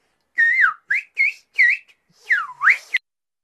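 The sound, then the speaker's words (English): Whistled English speech: a clear whistle in six or so quick syllable-like bursts with swooping pitch glides, mimicking the melody of spoken phrases, with no voices. “It's actually whistled English, right?”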